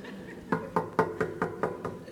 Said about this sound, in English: No, knocking is knocking. And then when you don't hear anything, you do that again, don't you?